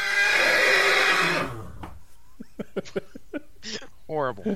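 A loud horse whinny rings out for about a second and a half, then trails off into a run of short, choppy vocal-like bursts.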